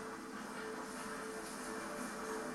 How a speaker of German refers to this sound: Oh, jetzt kommt aber ein Hubschrauber. Ist das so? Ja, ich höre was. Ja, ich auch.